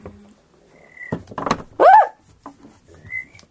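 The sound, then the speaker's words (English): A pen clatters onto a hard surface in a couple of quick, sharp taps, followed by a loud, short vocal yelp that rises and falls in pitch, with faint whistle-like tones around it. “I dropped my pen.”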